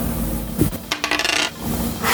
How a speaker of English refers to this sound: You're rolling very well, aren't you? My God, I love the sound of those dice. How many times are you rolling?